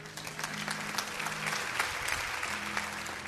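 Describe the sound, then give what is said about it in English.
A church audience clapping in steady, continuous applause, the many overlapping claps forming a dense, even patter at moderate loudness with no voices rising above it. “5% of the people are clapping.”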